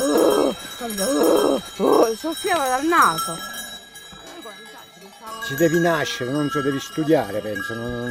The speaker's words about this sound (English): But they're clearly not happy about this flock of sheep showing up near their turf.